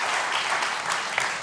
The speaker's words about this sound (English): Let's give these guys and give God a round of applause.